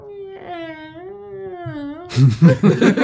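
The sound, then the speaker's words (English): A voice gives a long, drawn-out, wavering meow imitating a cat, lasting about two seconds, then loud overlapping chatter and noise cut in right after. “Making cat noises. Meow.”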